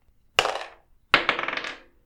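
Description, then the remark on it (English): Two sharp metallic clangs of a wrench swung at and striking a metal pipe. The first rings out briefly; the second follows with a longer, rattling, shimmering ring before fading. No voices. “You swing your wrench where you imagine it must be, and you hear this clang as your wrench hits metal.”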